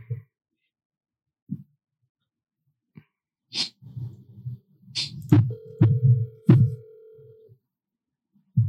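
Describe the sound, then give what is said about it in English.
A phone line rings once with a steady two-second ringback tone while waiting for an answer, surrounded by sharp clicks, low thumps and handling noises. “Pick up the phone”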